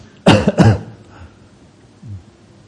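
Two sharp, loud coughs in quick succession, close to the microphone, followed by a quiet pause and a faint low throat noise. No one speaks.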